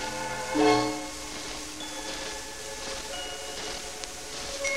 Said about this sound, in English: All the percussion family are played by striking, Rusty. But it doesn't really hurt them. Even the little bells are struck like this.